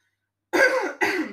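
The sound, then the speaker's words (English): A raspy throat clearing in two quick bursts, the first longer and the second a short follow-up, after a brief moment of silence. “Wait, let me clear my throat.”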